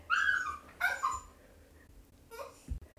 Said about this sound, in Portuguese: Por isso, o desafio agora é gravar com a minha cadela aqui a choramingar que ela tomou uma vacina.